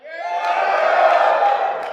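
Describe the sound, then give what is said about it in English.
A crowd yells loudly together to vote for a talk on how to get 100 million people to see an idea, a sustained, blended roar of many voices holding steady for about two seconds before tapering slightly at the end. “Who votes for how to get 100 million people to see your idea? Yell.”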